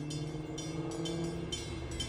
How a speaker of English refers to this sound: I'm right off of the Trump Tower, Marina City. Dearborn is where the House of Blues is, a couple blocks away from the Merchandise Mart. So in the background, I'm sure you can hear that ringing bell sound.